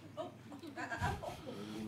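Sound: sheep bleating sound effect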